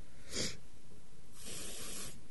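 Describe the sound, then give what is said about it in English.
Two hissing bursts of Lynx Excite aerosol body spray sprayed onto a body: a short puff, then a longer, steadier spray lasting almost a second. Both are bright and airy, with no voices. “So, today I'm going to entertain you by spraying my body with Lynx Excite.”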